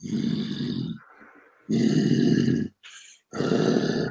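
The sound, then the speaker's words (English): A man growls like a wolf in three loud, rough, drawn-out bursts, separated by short breathy pauses, with no other talking, as part of a full-moon growling technique. “Now my chest is really opened up from the growling, right?”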